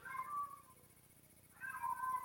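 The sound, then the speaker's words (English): Two drawn-out meows from two cats outside wanting to be fed, one after another with a short pause between, moderately quiet over a faint background hiss, with no talking. “The two cats are outside wanting to be fed.”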